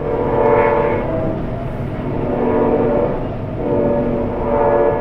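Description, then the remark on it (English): At 3:45 a.m., a train passes a home near the train line, rumbling steadily, its deep mechanical roar swelling and easing in waves with horn-like harmonic tones, loud and continuous with no voices. “I asked because I live near the same train line, about 30 miles north, and here's what it sounds like at my place in the middle of the night.”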